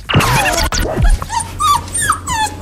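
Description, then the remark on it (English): A dog gives a sharp, loud bark, then breaks into a series of high, wavering whimpers and whines that rise and fall over the next couple of seconds. “Who let the dogs out? We got him.”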